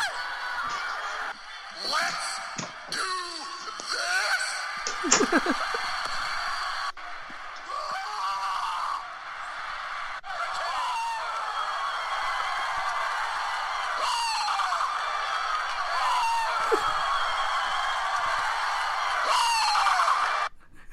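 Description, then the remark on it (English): A 20-second compilation of wrestler Brock Lesnar's screams: a rapid run of loud, hoarse male screams and yells, one after another, with strained pitch that rises and breaks, over a constant noisy wash that never drops out. “Instead, there's a 20-second compilation of Brock Lesnar screams.”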